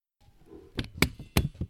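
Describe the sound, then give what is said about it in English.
A stapler clacks several times in quick succession, sharp metallic snaps with a bright ping, two strokes louder than the others, with no talking. “Did you think it was the hole punch or the stapler? What was the right answer? Stapler. It was. It was the stapler.”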